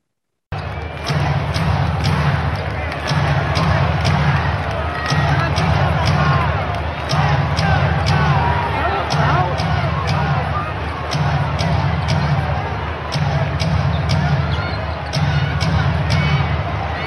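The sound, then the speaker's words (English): A dense, steady roar of a basketball crowd at a Sky game fills the whole stretch, a constant babble of many voices with scattered shouts and the faint thud of a ball bouncing beneath it. “Otherwise, you can just hear the sound and just hear the crowd.”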